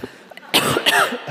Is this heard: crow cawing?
no